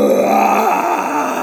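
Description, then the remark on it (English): A loud, rasping krayt dragon roar, played as a recording by the droid DV9 in a huge room with a deep pit, held for about a second and a half with a slowly bending, groaning pitch and no voices. “It's DV9 playing the sound of a crate dragon to freak out Bebo.”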